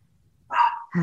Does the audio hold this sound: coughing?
no